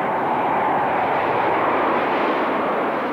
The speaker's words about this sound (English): Oops, I hope that airplane didn't drown you out. It did.